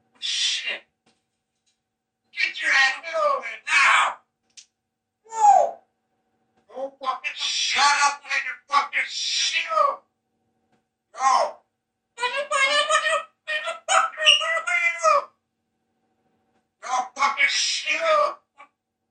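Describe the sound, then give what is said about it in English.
A parrot mimics a heated human argument that led up to a shooting, switching between a higher and a lower voice in short, garbled bursts separated by brief pauses, with no other sounds. “Using both a higher voice and a lower voice, Bud the parrot seemed to be repeating the argument”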